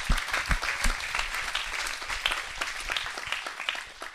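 A crowd bursts into steady applause, many hands clapping in a dense, sustained patter at moderate volume, with a few sharper individual claps standing out early on.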